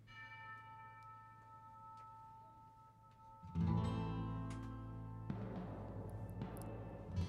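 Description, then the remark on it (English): A bell rings out with long, shimmering overtones in theme music, then a fuller band including Spanish guitar swells in about halfway through, louder and richer, while the bell tones keep sounding over the music. “Okay, so immediately I'm starting to think, you know, the bell, the Spanish guitar, you know, some things like that are going to be...”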